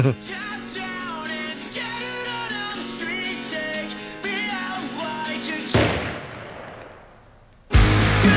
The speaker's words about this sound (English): It's so, like... Yeah. It is shocking. Yeah. That's like a real gunshot sound. Oh, yeah. That's not yeah. even like a fake. Yeah. Like I hit the pad on the keyboard or whatever.